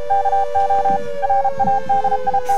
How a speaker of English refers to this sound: Isn't it funny that they used a Morse code to recognize, to symbolize the news? Was this, this must have been the 1940s at best. Why is that in my head as a news sound?